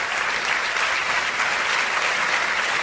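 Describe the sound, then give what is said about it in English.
Loud, sustained applause from a large crowd after a singing performance, a dense steady wash of clapping hands with no breaks, a standing ovation, with no voices standing out. “Standing ovation.”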